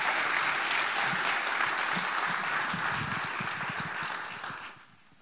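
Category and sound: crowd, audience applauding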